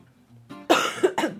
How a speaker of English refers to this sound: Sorry, a little cough there.